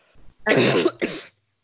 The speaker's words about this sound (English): Oh God, sorry for the cough in the current climate.